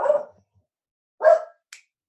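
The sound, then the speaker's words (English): Two sharp dog barks about a second apart, clear, followed by a brief faint click. No one speaks over them. “Yeah, dog is still going involved.”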